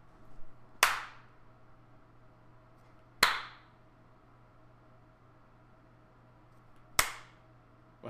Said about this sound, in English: I'm just clapping very slowly.